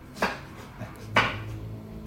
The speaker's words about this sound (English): Her voice was low. She kept chopping.